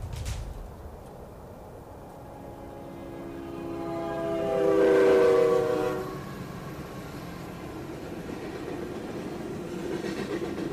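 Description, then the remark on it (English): A train rumbles along the tracks, its horn swelling loudly for a couple of seconds midway as it draws near, then fading back into a steady, noisy rolling rumble. “There's a train coming.”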